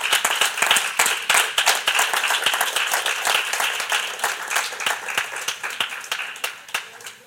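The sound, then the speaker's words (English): Steady applause from an audience, many hands clapping in a dense, crackling wash that fades slightly toward the end, with no voices standing out. “I ask for you to continue your clapping”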